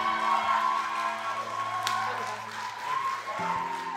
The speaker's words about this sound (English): And so I'm so excited to introduce our speaker for tonight, and I want you to do me a favor and honor him with a loud round of applause. Would you give it up for Pastor Israel Lazo?